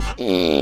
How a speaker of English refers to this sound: Fart or art? I'm going with fart again.